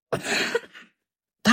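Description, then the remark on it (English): A single loud cough with a raspy, breathy tail, followed by a brief silence before another burst of sound begins at the very end. “Don't cough for that.”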